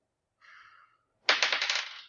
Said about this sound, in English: Don't touch my dice anymore. Okay, here's the thing. I rolled a 1, but I get a bonus.